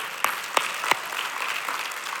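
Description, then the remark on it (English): A crowd at a sermon applauds in a steady, dense wash of clapping, with three sharper, louder claps standing out early before the applause continues evenly. “And that is a great moment to clap.”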